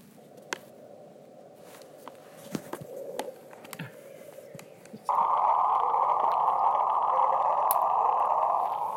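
The bloop, a mysterious underwater ocean sound: a low droning hum with scattered clicks, then about halfway through a sudden louder, higher rushing tone that sweeps slightly upward and holds steady to the end.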